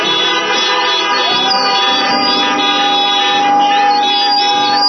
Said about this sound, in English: I said I wasn't going to do this, but go ahead and just toot your horn for Jesus right now.